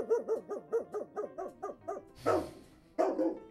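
A dog gives a quick run of about eight short, rhythmic yips, then two louder, fuller barks, with no talking.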